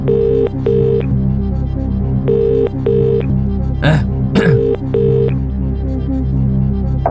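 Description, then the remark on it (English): A telephone rings during a Who Wants to Be a Millionaire phone-a-friend call, in repeated double bursts, three cycles with short pauses between, loud over a steady low background drone, with a couple of brief noisy rustles midway. “His phone's ringing.”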